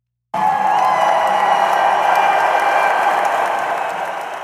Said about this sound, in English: We hear the roar of lawnmowers, clapping, wooting, shouting, in a world exactly like your own.